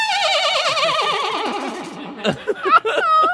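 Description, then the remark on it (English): A person imitates a horse's whinny, a loud, wavering, vibrato-filled neigh that slides downward over a few seconds, ending in choppy breathy bursts and a final rising squeal. “It felt like a horse.”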